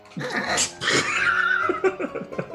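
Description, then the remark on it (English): A dog lets out a few short, strained barks that stretch into whiny, drawn-out tones, fairly loud, with no one talking over it. “Sorry, I got all flustered here, but I got all flustered from the dog.”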